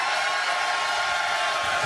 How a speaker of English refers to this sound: You can hear the crowd. Crowd, can you guys make some noise?